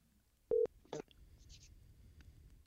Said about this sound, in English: Well, I'm a little upset at you. Whenever the phone rings, I expect you to answer it after the first ring